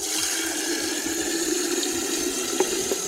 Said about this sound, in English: We've got a kettle here. Metal kettle? Yes. Okay. Now, let's try this. Fill this up with water and let's see how this works.